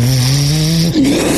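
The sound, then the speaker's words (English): A voice imitates a jet engine spinning up, for a hammer weapon that looks like an airplane engine: a loud, sustained buzzing drone with a hissy top that climbs gradually, then jumps to a higher pitch near the end. “It looks like a jet engine. Yeah. Let's make that cannon, yeah. Like that would be awesome. It starts spinning.”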